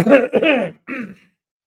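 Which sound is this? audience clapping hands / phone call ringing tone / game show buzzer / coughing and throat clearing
coughing and throat clearing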